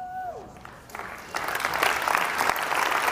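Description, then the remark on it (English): Applause from an audience starts scattered, then swells into steady, dense clapping for a few seconds, fairly loud. “Don't clap for me.”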